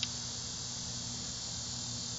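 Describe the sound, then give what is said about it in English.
A steady, unbroken drone of buzzing insects chirring outdoors, a continuous high whine over a low background rumble, with no voices and no pauses throughout. “Anyway, I hope that's not too loud because we are recording outside and that's proof. These are loud ass, I don't know what they are, locusts?”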